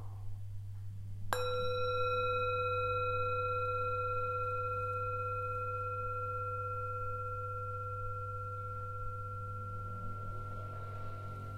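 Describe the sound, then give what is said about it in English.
A single meditation bell is struck once, giving a bright metallic attack and clear ringing tones that slowly fade over about ten seconds, with a steady low hum underneath and no talking. “Good, and as the bell slowly fades, just settling your attention with your eyes closed.”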